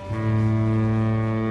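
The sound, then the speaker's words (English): A single loud, sustained foghorn blast from a lighthouse, a deep steady drone with rich low harmonics that starts abruptly and holds without a break. “"Ah! Oh no! The lighthouse foghorn!"”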